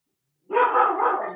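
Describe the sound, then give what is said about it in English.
A dog barks loudly in a quick burst after a moment of silence, the harsh bark running on without pause to the end. “Sorry, dogs, they happen.”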